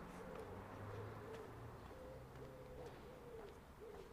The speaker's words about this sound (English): And wood pigeons, noisy in the morning, possibly attracting mates.